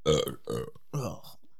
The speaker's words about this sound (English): These mics just, they make you burp too much.